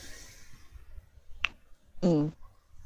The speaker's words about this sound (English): Sorry, I'm munching on a cough drop right now.